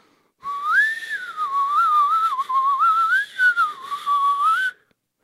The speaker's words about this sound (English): Hey, why don't you use that whistle to try to call that rat back before he gets us in more trouble.